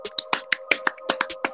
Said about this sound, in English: We like to do a little clap at the end, so we'll clap it out.